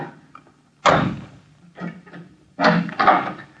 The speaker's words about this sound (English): Well, come inside then. Excuse me if I bolt the door again.